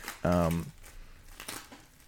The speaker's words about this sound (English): has got a package it's something he's wrapped up. You can hear in the background. He's got scissors.